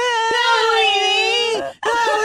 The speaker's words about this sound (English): too bad they don't have like a mannequin with its tongue stick to a pole. Oh God! And it makes a noise of a kid screaming that his tongue is stuck to the pole, and then turn it on at night.